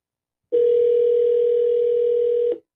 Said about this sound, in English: Oh, it's ringing.